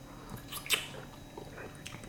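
Faint mouth sounds of someone taking a first sip of a drink, with a soft slurp near the middle and a few small wet clicks around it. Quiet, and no talking.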